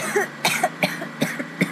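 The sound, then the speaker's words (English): A series of harsh coughs from someone emerging from thick white smoke, in quick bursts, about four or five in under two seconds, with short breaths between them and no talking. “emerged from the smoke, coughing.”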